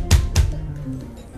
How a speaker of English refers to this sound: I bang on the door.